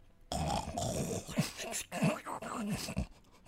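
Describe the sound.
A person imitates snoring and snuffing using only the soft palate, no vocals, producing raspy, throaty snorts and grunting breaths in a continuous run of about three seconds, with no speech.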